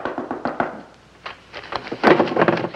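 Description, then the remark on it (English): Perry White of the Daily Planet knocking on a door: a quick run of dull raps, a brief pause with a few scattered taps, then a louder, denser flurry of knocks toward the end. “Get the door.”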